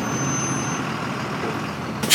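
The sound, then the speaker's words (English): A large bus arrives outside 770 as the 4 o'clock bus, its heavy engine rumbling and droning low, then a sharp, loud hiss of air brakes bursts out right at the end. “after waiting a long time outside 770 for the 4 o'clock bus to the aisle. It finally arrives.”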